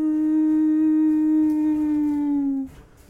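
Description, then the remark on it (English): A voice imitates a howling wind: one long, steady, loud moan at a fairly even pitch that sags slightly before cutting off, followed by a brief quiet rustle. “You hear the slight sound of kind of the wind blowing and creating a howling sound.”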